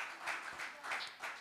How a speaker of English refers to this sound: Give the Lord a praise of applause.